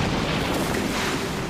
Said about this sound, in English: Not much for the army to clean up after this, he said proudly as a final explosion filled the air around us with smoke and sand.